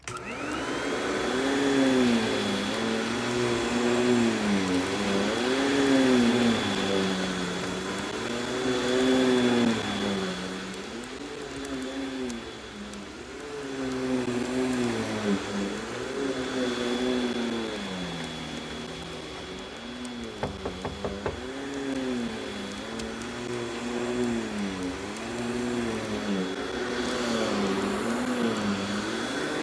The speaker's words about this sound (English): I had people checking into units that weren't clean, and now I'm here with a vacuum.